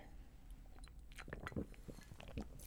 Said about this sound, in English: Oh, so good. One more sip.